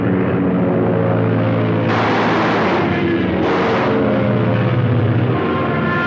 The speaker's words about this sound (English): And then for the airplanes, of course, you're hearing the roar of the airplane engines and the machine guns.